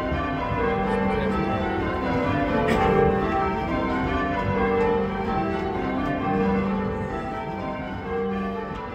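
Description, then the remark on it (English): Church bells in change ringing: a steady, continuous peal of overlapping bell strikes that blend into a dense, ringing wash, moderately loud and sustained throughout, with no voices. “You can't talk about Nine Tailors without talking about change ringing of bells.”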